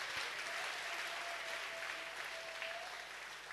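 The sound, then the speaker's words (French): A crowd claps steadily throughout, a dense, even wash of many hands applauding at moderate volume without pause or voices. “Why did you not clap?”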